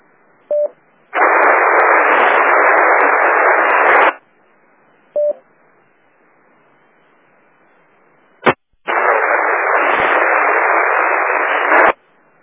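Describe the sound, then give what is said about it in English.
Two bursts of loud radio static on an amateur radio repeater, each lasting about three seconds, with short faint beeps between them and a sharp click before the second burst; a weak station's signal barely reaches the repeater and no clear voice rises above the hiss. “You're barely making the machine.”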